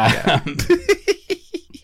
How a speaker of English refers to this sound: And then he coughs.